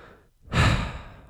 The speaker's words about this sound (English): I suck at breathing on these, as you know.